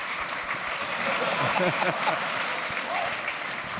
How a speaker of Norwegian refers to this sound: Det fortjener virkelig en applaus.